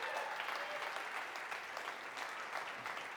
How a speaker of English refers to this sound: Is that true? Yeah. Give the Lord a hand, because that's some truth right there.